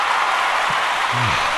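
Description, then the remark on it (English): Steady applause from a crowd, a sound effect from an effects bank played as an audio curtain call for a sign-off: a dense, continuous wash of clapping at an even loudness for the whole clip, with a short low-pitched sliding tone briefly surfacing near the end. “Though maybe my producer could arrange a little audio curtain call for my sign-off. Anything in the effects bank?”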